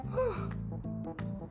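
A long, voiced yawn with a breathy, groaning tone: the pitch swoops up and then sags, and the sound stretches for over a second with no talk around it.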